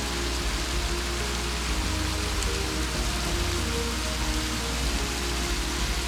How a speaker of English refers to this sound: Suddenly, the creek begins to pick up speed as it roils its way over several small drops.